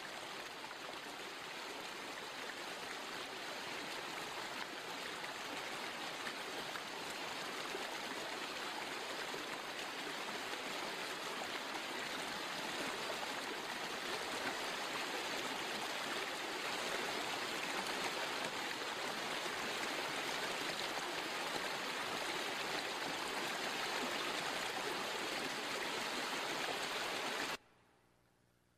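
A babbling brook flows steadily for nearly half a minute, a continuous rush and gurgle of water with no voices, ending abruptly.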